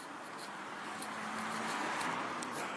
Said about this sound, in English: Sorry about that. Who'd have thought there'd be so much traffic 5 o'clock in the morning?